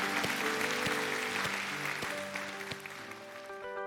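A church audience applauds after a prayer, giving the Lord a hand, with a dense, steady wash of clapping over sustained keyboard chords and a soft regular beat, the applause easing slightly toward the end.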